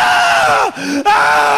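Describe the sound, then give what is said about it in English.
A voice imitates a man screaming in agony: a loud, strained, sustained wail that drops into a groaning dip, then breaks back into a raw, continuous, forceful scream. “And I'm like, oh my God, mate, stop screaming for fuck's sake. Stop screaming.”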